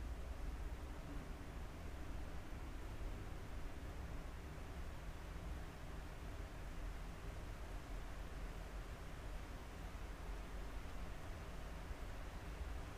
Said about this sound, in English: And then start listening to the rhythm of the rain.